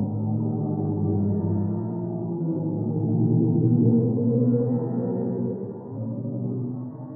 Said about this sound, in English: But one of the black holes NASA studies sits at the center of the Persis Galaxy Cluster, which is home to hundreds of galaxies. They are 240 million light years from Earth, and this is what a black hole sounds like.